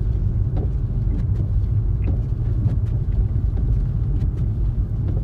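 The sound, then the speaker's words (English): A car drives steadily over a snowy road in Germany during a snowfall, its low engine and tire rumble continuous, with scattered soft crunches and clicks from the surface. No one speaks. “And again, my car is handling this situation very well.”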